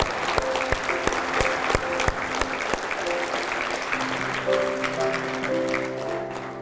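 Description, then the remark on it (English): An audience at LifePoint Church applauds in a dense, steady wash of clapping that continues throughout, while sustained keyboard chords rise underneath in the second half. “We can clap again.”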